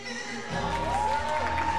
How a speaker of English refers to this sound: Yeah, add our applause, a simple but powerful motivation.